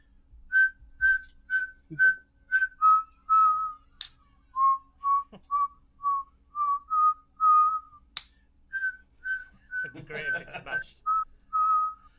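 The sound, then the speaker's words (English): A man whistles a tune live as intro music for a show, a steady melody of short, clear notes, interrupted by a couple of sharp clinks of a stubby bottle and a brief clattering burst near the end. “Welcome to the Daft Hour, show 6, brought to you by a stubby bottle and a whistling man.”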